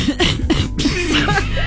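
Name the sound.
cough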